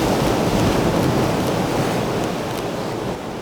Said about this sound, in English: If I get a big wave now, this is going to be really nice. Come on, where's the waves? Be careful what you wish for. Here it comes.